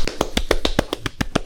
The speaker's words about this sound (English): But hey, can you clap for me?